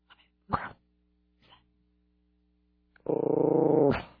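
A dog gives a couple of short, gruff vocal bursts, then lets out a sustained, rumbling growl lasting nearly a second, fairly loud, with no talking.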